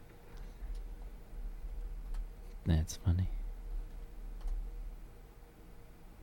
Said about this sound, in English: I don't think you were typing, were you? I clicked it.